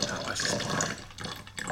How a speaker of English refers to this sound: And I know I said don't pour half a cup of tequila, and I just poured a half a cup of tequila, but que sera, sera.